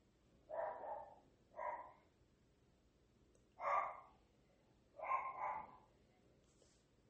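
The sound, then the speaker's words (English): Dogs bark in several short, sharp bursts, some single and some doubled, spaced irregularly over a few seconds against a quiet background with no talking. “Okay, she just left to take the dogs out.”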